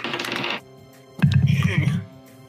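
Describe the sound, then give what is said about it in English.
Dice rattle and clatter briefly across a dice tray in a Perception roll, a quick burst of hard clicks. After a short pause, a voice makes an indistinct sound. “How do you get cocked in a dice tray?”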